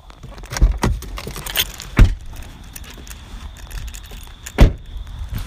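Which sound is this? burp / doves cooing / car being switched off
car being switched off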